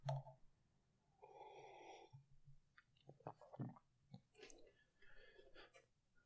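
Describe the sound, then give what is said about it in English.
Quiet sipping of hot tea: a soft slurp followed by small swallows, lip smacks and gentle breaths, with nobody speaking. “Let me take a sip of tea.”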